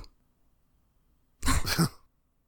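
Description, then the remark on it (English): A short, nervous cough breaks the silence: two quick, throaty bursts, with no talking around it and quiet before and after. “cough. Is that what it said on the subtitles?”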